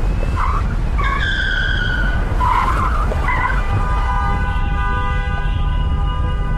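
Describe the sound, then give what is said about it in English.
Car tires screech loudly as the car takes a sharp right turn down a ramp, short squeals giving way to a long sustained shriek over a heavy rumble of engine and road noise. “took a sharp turn right. We went down the oncoming ramp, zipped past some cars, crossed an intersection, and jumped back onto the parkway.”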